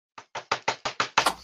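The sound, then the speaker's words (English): A quick run of about seven sharp, hard raps on the door of Simon's cell, evenly spaced, with the final knock landing loudest. No voices. “So Simon is quietly studying in his cell when suddenly there's a sharp rap at the door.”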